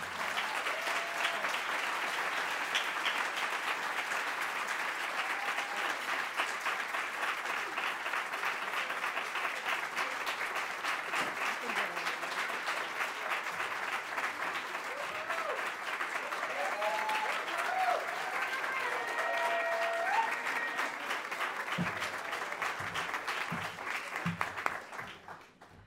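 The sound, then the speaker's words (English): Sustained audience applause for a speaker at a forum, a dense wash of many hands clapping at a steady loud level for about twenty-five seconds, with some faint voices and cheers mixed in before it tapers off at the end. “Like we could have stood here for at least 5 minutes clapping for you”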